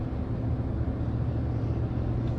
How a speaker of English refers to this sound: So immersed in this podcast, I'm overlooking that I have two fucking bulldozers, or I'm sorry, dump trucks that I'm driving 10 friggin' miles per hour behind. Just a few feet from my house.